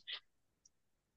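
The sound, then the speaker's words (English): Large Hexen tarot cards being shuffled: one quick, papery snap, followed by a faint second tick and then near silence. No voices. “shuffling his monstrously large cards.”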